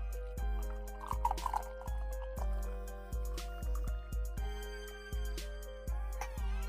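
Peppermint tea pouring into a cup, with a steady run of gurgling, glugging pulses and rising fill tones for several seconds, no voices.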